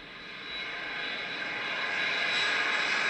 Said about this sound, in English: Holy shit, the fucking plane's moving.